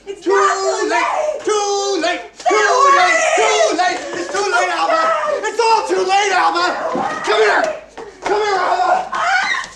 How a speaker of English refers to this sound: She screams and she runs and there's no music. Mm-mm. Because now she's with him and he's chasing her throughout the entire building, all the way downstairs.